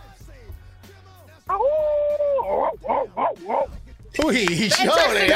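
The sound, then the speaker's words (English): A person imitates a dog: a drawn-out howl, then a quick run of short woofs, ending in a loud, wavering howl, all fairly loud, with faint background sound at the start. “give us a woof.”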